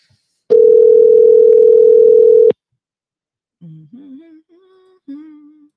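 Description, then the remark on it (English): A single loud, steady telephone ringback tone sounds for about two seconds while a call is placed, cuts off, and after a short silence a voice briefly answers over the line. “You know that half the time now, they don't even want to answer the phones when we call them.”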